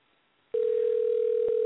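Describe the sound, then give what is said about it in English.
A phone line's steady, unbroken dial tone, from dialing a phone number on a computer, begins abruptly after a short silence and holds at an even, loud level, with one faint click partway through. No one speaks. “Just give me a second to dial her number. It's so weird to dial a phone number on a computer.”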